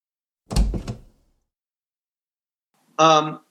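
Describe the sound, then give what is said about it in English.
A loud mechanical clunk of a switch being flicked on a door to signal that the group is not moving forward, then a pause and a short, harsh buzzing tone lasting under half a second. “if you could flick the switch on each door so the powers that be know we're not moving forward”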